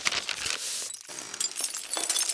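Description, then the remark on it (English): A glass window shatters with a loud, bright crash as a person crashes through it, followed by a couple of seconds of scattered tinkling shards and debris. Sharp, with no voices. “The minute the glass shattered, I leaped to my feet and started to rush after Willie”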